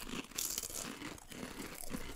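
Crisp crunching of chips being bitten and chewed, a steady series of crackly bites with bright high-pitched crackle, no talking.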